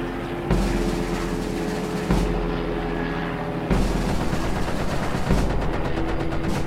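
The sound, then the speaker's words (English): Gunfire crackles in several bursts over a steady low rumble of helicopter engines, each burst arriving a little louder as the shooting draws nearer. “Listen, gunfire. You're right. And it's getting closer, too.”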